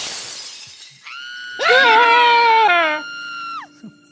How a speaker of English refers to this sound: screams and throws herself out the window.